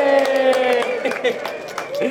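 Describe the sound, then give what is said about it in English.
A round of applause welcoming the host's mother: scattered, uneven claps rattle along steadily while a sustained, tonal cheering voice rings over them, fairly loud throughout the short burst. “Ladies and gentlemen, please give a round of applause to my mom.”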